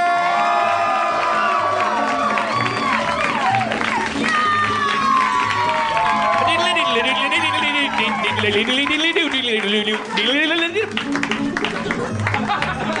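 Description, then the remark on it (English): A lively live audience at a Harmontown show at the Meltdown cheers, whoops and applauds continuously as Dan Harmon is welcomed to the stage, with overlapping shouts and a steady wash of clapping throughout. “What a lively crowd.”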